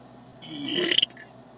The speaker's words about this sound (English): Ooh, I had a burp.